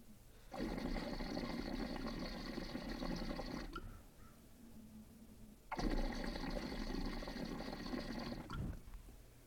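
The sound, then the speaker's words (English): Water rushes and gurgles as it drains through a 14 millimeter standard glass percolator piece, in two steady bursts of about three seconds each, separated by a short quiet pause. No one speaks. “So definitely a little bit quicker of a drain on that one. And you can hear really the difference in that sound.”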